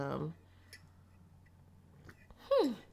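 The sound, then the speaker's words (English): A quick sip of hot green tea: a few soft clicks in a near-silent pause, then a short slurping draw with a falling tone. A voice speaks briefly just before. “So I took my little sip, and we are ready to go.”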